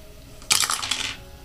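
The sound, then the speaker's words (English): Dice clatter across a hard tabletop in a quick, bright rattle of small clicks lasting under a second, fairly loud, with no talking. “Oh, shit, I rolled the wrong dice.”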